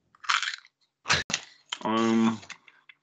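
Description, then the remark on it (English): Crisp crunching from someone biting into a potato chip: a couple of brittle bursts with a sharp snap, then a short voiced murmur while chewing. “Gonna eat another chip.”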